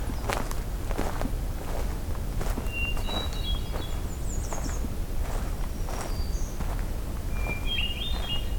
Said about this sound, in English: Nashville warbler as well, and American redstart. He's moving on.